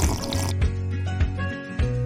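Water pours steadily into a glass, clear, with a brief splashy start that settles into a continuous filling gurgle and a few small drips, no voices.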